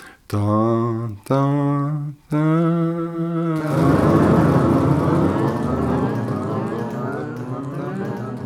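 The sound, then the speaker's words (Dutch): Three sustained sung notes, each about a second long, give way to a dense, clashing blend of voices holding out-of-tune tones for several seconds at steady loudness. “Dat is vals.”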